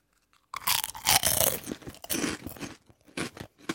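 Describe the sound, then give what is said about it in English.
Loud crunching of a puffed, crispy pork-flavoured snack from a Chinese supermarket being bitten and chewed, a rapid series of brittle cracks and crackles over a few seconds, with no talking. “This is a pork crunch.”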